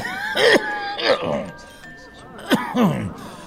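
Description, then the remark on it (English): A person coughs and clears their throat in two pairs of harsh, raspy bursts with a short pause between them, over a faint steady tone. “excuse me. Something in my throat.”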